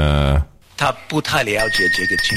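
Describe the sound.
A voice chants "ching ching" in a sing-song way, then a clear bell ding rings out and sustains faintly beneath the continuing voice.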